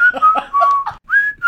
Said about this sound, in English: Whistling whilst you're doing manual labour.